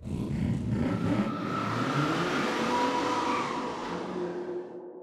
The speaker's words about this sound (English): dozens and dozens of tiny race cars lined up on the ground. Shouted Bunce, and the cars sped off